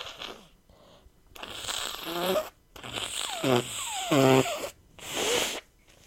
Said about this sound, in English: Stop staring at me while I blow my nose.